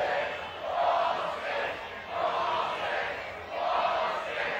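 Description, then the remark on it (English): A baseball crowd, including an 87-year-old man, roars and screams in three rising surges, each swelling loudly then easing slightly, a dense, sustained wall of cheering voices with no clear individual words. “They said it was like the student section, and then you look around like, that's an 87-year-old man screaming. Notice the volume.”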